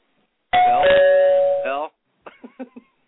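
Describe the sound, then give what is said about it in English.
A loud electronic doorbell rings, two sustained chime tones sliding from higher to lower and ringing for over a second, followed by a brief burst of someone speaking. “Bell?”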